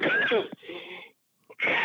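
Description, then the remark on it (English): Coughing fits with a raspy, wheezy edge, caused by a tickle in the throat: a strained burst, a short pause and a tiny catch, then another harsh cough at the end, loud and alone without speech. “Hey, press the cough button. Tickle in my throat.”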